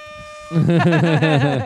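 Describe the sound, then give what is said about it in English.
A loud, brassy air horn blast kicks in after a brief pause and blares for over a second, its harsh tone wavering in quick pulses before cutting off. “Neil Mahoney on just the air horn today.”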